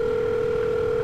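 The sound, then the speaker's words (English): A steady, unbroken telephone dial tone hums for about a second as someone phones a superior at their office, a clear, even pitch with no interruptions and no voices over it. “So I make a quick phone call to them and explain to them that my partner has been in an accident and is undergoing surgery currently.”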